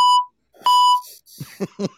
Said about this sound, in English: at some point in time, you're just going to flatline. You're going to be like, beep.